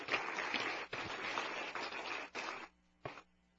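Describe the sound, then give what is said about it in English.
An audience claps for an announced donation to a school in a dense, steady patter for about two and a half seconds, stops, then gives one short final burst of applause over a faint low hum. “We can clap for that.”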